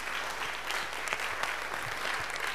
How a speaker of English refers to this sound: If you are clapping, it's good.